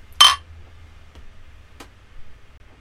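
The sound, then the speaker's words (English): A single bright clink of glasses touching in a toast, sharp with a brief ringing tone, followed by a faint soft tap a moment later over quiet low background hum. “I'd say we cheers this to our livers for cutting back this month”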